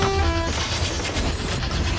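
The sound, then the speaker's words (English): A diesel train rumbles along the rails with steady, loud low-end roar and clatter; a brief horn blast sounds at the very start before the rolling noise carries on. “It's a diesel train.”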